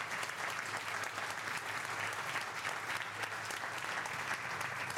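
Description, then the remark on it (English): A live audience at an event in Sydney, Australia claps steadily throughout, a dense, sustained wash of many hands applauding, loud and even from start to finish with no voices standing out. “Everyone, give yourselves a round of applause.”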